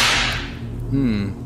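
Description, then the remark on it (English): A single sharp, loud whip crack at the start as a guard whips a servant girl, its bright burst fading over a second, followed by a brief wavering tone underneath. “Guard, give her the whip!”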